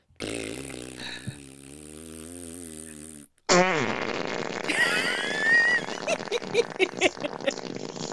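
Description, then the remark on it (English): Two long fart sounds in a row from two different people: first a steady, low buzzing one lasting about three seconds, then a louder, wetter sputtering one with squeaky bursts that trails off into crackly pops. No talking. “you're not allowed to fart on podcasts.”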